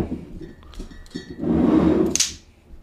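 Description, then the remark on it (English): Glasses clink together, a few light taps and a brief rattle followed by one bright, sharp clink near the end, with no talking. “Let's not be clanking glass against each other.”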